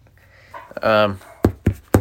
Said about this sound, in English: Did you hear that gunshot? No. The fucking idiots behind me are shooting rabbits. They've been doing it the last couple days. It's not even rabbit season.